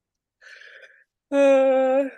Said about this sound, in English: With that yawn, we should probably end the episode.